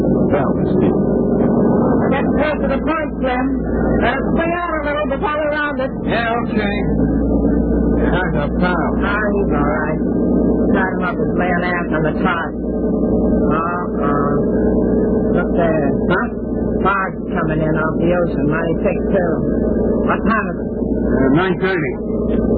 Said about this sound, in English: Their boat pulls away from the pier.